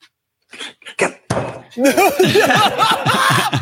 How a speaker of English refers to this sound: Yo! He's just slamming the desk like he's like a super villain